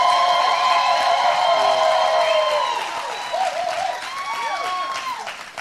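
A crowd applauds steadily and loudly to celebrate a college graduation from Auburn University, with high whoops and cheering voices rising over the clapping, fading slightly toward the end.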